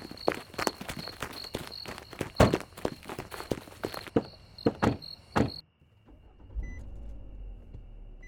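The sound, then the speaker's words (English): A burst of sharp thumps and clatter, like car doors shutting amid footsteps, gives way after a brief hush to a low engine rumble as a car starts pulling away into the night. “As the car pulled off into the night on Thursday, September 6th, those inside hoped that their actions would not come back to haunt them.”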